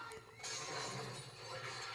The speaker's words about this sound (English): Another glass breakthrough. He bust through, man.